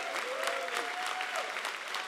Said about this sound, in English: So thanks a lot for being a part of ARC. Come on, let's clap our hands for that, ladies and gentlemen.